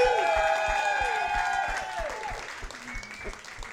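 Loud audience applause with cheering and whoops as a comedian is welcomed onto the stage, a dense steady clatter of clapping under bright, sustained tones that slowly fade as the applause thins out.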